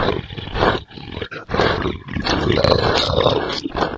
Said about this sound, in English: It doesn't take long before you hear outside of the wall a scratching and a bit of a growl.